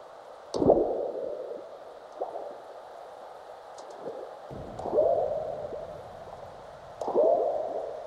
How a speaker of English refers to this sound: Frog-like burps you can hear are earthquakes, large ones followed by the chirps of aftershocks.